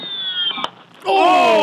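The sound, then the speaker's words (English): A single sharp crack of a .50 caliber rifle, set on a small table, striking a steel target straight ahead at 100 yards, followed by loud, wavering high-pitched whistling tones of the bullet tumbling back that bend and slide after the impact. “Straight fucking ahead of the steel target. At 100 fucking yards. Listen how fast this motherfucker comes back.”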